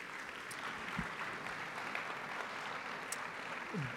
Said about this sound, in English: since we haven't clapped in like 2 minutes, let's clap and welcome up Joe